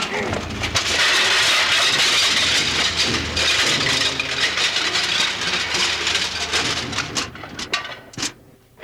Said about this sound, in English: All right, start it up. I just got to get up a little speed on this big wheel. Then I throw in the clutch and start stirring the dishes around.